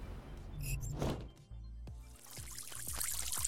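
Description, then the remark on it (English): A steady stream of liquid splashes and pours into water for a few seconds, like urine hitting a bowl, with a few soft thumps partway through and no talking. “And no, it wasn't because everybody all of a sudden caught on to my bit about pissing in Dan Crenshaw's open eye hole.”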